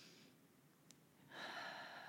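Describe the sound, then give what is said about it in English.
A single breath drawn in through the mouth, a soft airy rush lasting under a second after a quiet pause. It is low in volume, with no talking. “Literally just taking a breath.”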